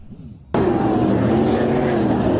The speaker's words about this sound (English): It's a heart-stopping crash on a racetrack. Multiple cars lose control and start flipping through the air. And watch one car flies right over the safety fence, heading right towards spectators. It happened at a speedway in Australia,